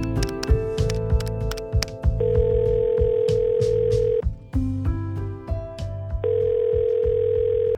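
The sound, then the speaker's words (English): A man dials a new number on a telephone, with short tone bursts followed by a steady, continuous dial tone that holds for a couple of seconds, drops briefly, then returns at a similar pitch. No one speaks. “He shakes his head in disappointment and dials a new number.”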